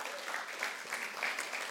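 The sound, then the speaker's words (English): An audience claps steadily for volunteers at a church gathering, a dense, even burst of applause at moderate volume, filling the short moment without any voices over it. “Can we give them a round of applause as well?”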